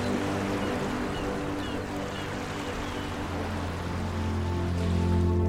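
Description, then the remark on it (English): Steady, continuous wash of ocean waves in the sun with a low rumbling undertone, even in loudness throughout, swelling slightly at the very end. No one speaks. “It's just you and me and the waves and the sun and the birds.”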